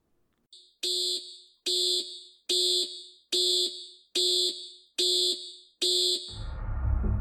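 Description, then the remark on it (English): A lunar module (LEM) computer alarm during the moon landing sounds in seven loud, evenly spaced electronic beeps, each a bright harmonic tone, followed at the end by a low, hissing rumble; the computer was overloaded by data from the landing radar and other systems. “On the LEM, their computer now began sending out alarms.”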